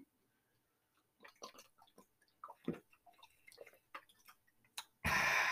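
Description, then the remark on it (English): Someone takes a swig of warm, flat water: a run of soft, wet gulps and mouth clicks, then an abrupt loud, breathy rush at the end. “I need to take a swig.”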